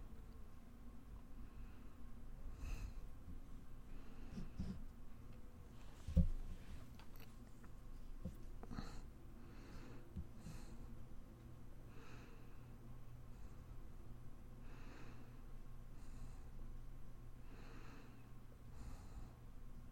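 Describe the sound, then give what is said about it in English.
A Housewives tarot deck being shuffled, with soft papery swishes repeating in short bursts over a quiet background and no one speaking. “You tell me when to stop shuffling”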